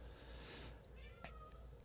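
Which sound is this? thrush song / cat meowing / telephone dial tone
cat meowing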